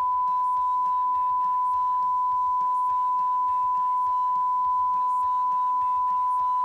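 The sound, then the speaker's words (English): A long, steady censor beep holds one high pitch for nearly seven seconds, masking someone talking underneath; faint fragments of the voice still show through beneath the tone. “Well, maybe I'll say it right now and I'll just put a big beep over it.”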